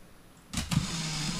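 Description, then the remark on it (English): A Mamiya M645 camera's motor winder advancing film: a sharp mechanical click or two, then a steady electric whir that runs on without pause. No one speaks. “John's shooting with his Mamiya M645. Mamiya. You have a very loud one. With a motor winder.”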